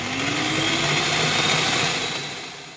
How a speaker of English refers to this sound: They proceed to run over it with a lawnmower, putting on their headphones when greeting with the horrific sound of blade on meat and bone.